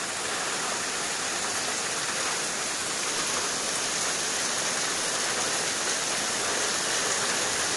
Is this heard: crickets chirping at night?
no